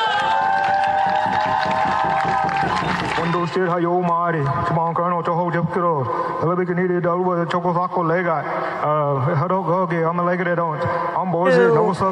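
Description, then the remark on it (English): A protest crowd at the UN Climate Summit (COP) in the United Arab Emirates chants in a steady, rhythmic pattern of loud voices, preceded by a few seconds of sustained, droning tones before the chant takes over. “You've been listening to a protest that took place yesterday.”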